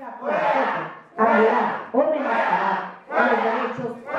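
A loud crowd in the Baja California state legislature chants 'fuera' ('out') in unison at Congresswoman Miriam Cano as she proposes a marriage equality bill, repeated four times in a steady, forceful rhythm with brief gaps between shouts.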